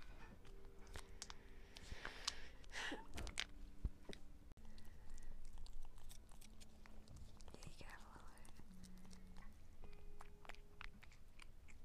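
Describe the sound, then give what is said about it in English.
Wet chewing from a female cat working through chunks of food, with rapid irregular crunches and clicks throughout and some faint whispery voice sounds in the background. “She likes the chunks.”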